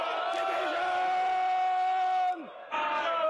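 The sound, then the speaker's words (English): A loud, unbroken din of many members of parliament shouting over one another, with one sustained voice sliding down in pitch before a brief lull, then the clamor starts up again. “There's no good people shouting.”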